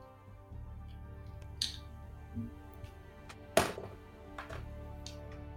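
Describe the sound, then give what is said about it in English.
Different dice being rolled on a table for a perception roll: a handful of scattered clacks and knocks on a hard surface, one sharp louder hit midway, over a low steady hum with no talking. “Different dice as well. Different dice.”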